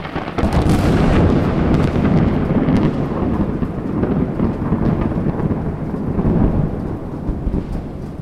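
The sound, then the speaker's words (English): A loud thunderstorm roars, a sharp lightning crack opening into heavy rolling thunder that rumbles continuously through the whole stretch amid steady rain, with no voices. “let's take shelter from this thunderstorm under a sheet of corrugated metal. I hope we don't get struck by lightning!”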